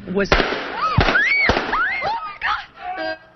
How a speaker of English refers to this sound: were watching last August 26th when her live interview with a local Chamber of Commerce executive was suddenly interrupted by gunfire.